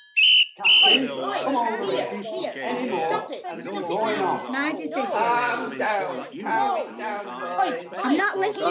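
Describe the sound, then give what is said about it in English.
Two quick, shrill referee-style whistle blasts ring out at the start, then a lively crowd of voices breaks into excited chatter, squeals and mouth-made whistling sounds, as people pretend to be referees blowing whistles to control an unruly football match. “Let's all pretend to be a referee blowing our whistles, trying to control an unruly football match.”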